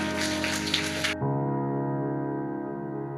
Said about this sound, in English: Let's just give Jesus a round of applause this morning.